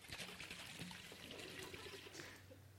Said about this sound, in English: Okay, let me ask you a question. Why did the water come out of the bottle? Okay, because I shook it.